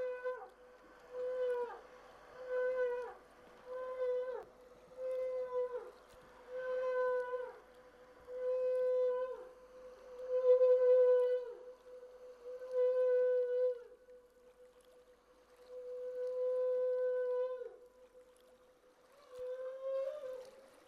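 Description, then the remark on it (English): Humpback whale calls recorded underwater by Jan Straley with a hydrophone: a long series of repeated, haunting, high-pitched tonal whines with a steady pitch, each lasting about a second, loud, with no voices. “they make the surreal, haunting, high-pitched whining or howling-like sound.”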